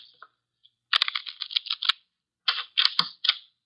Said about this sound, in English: The cards are shuffled. I'll place them in the center of the table.